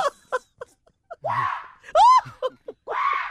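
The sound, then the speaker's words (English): A person imitates jungle animal cries: several short yelps and hoots, then one loud, shrill rising-and-falling scream, followed by a drawn-out wailing call, all unaccompanied. “He got the scream, man.”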